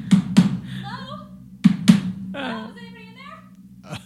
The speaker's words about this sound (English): Wow. Somebody's banging on our door pretty aggressively.